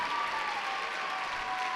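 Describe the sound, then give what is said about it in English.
Steady applause from an audience for a poet after judges announce scores, a dense wash of many hands clapping at an even, sustained level with no voices standing out. “Applaud the poet.”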